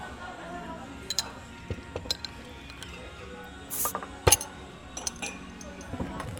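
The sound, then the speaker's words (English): Soju and beer bottles being opened and glasses clinking: scattered clicks and small ratcheting cap sounds, a brief fizzy hiss, then a sharp clink, all moderately quiet, with faint voices in the background. “Well, shall we crack some open?”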